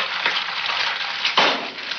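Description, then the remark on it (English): An egg sizzles steadily in a hot frying pan, a dense crackle with no voices, briefly swelling louder partway through before settling back to an even hiss, from an anti-drug public service announcement of the 1980s or 1990s. “If you're old enough to remember the 80s or 90s, you may remember this PSA involving an egg and a frying pan.”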